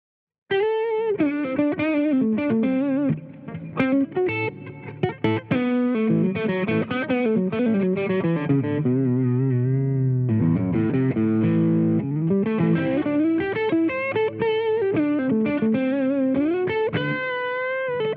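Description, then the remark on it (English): Crunchy, distorted electric guitar through a Gatekeeper GKP H Plus pickup, playing a riff of sustained chords and single notes, thick and harmonically rich, with a brief pause near the middle before the playing resumes at full level. “you remember Mike when you were recording, he got pretty crunchy with this one.”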